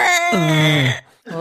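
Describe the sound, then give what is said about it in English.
A voice imitates a monster screaming in pain after taking damage: a strained, wavering cry that slides down in pitch like a squawking moan, halfway between a bird squawk and a moan, breaks off briefly, then starts again, loud and alone. “So yeah, it sounds halfway between like a bird squawking and sexual moaning every time.”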